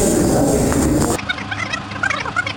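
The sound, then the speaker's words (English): A harsh, warbling, electronically distorted Dalek voice, made by someone speaking from inside a Dalek, buzzing and gobble-like for just over a second, then cutting abruptly to thinner, choppy, higher-pitched bursts. “So, yeah, right, I'm going to have a shot in a Dalek now.”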